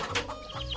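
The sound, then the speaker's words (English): A brief burst of bird calls with a clucking, fowl-like quality, sounding busy and scratchy for under a second, with no voices. “My true love gave to me four calling birds.”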